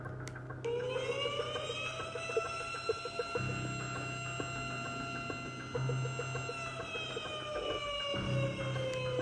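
A tornado warning siren wails steadily with a long, sustained tone that slowly rises and falls in pitch, carrying loudly over a low rumbling background with no voices.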